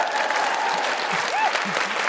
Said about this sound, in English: Yes, applaud. Yeah.